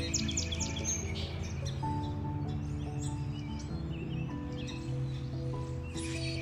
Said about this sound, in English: My beautiful pigeons.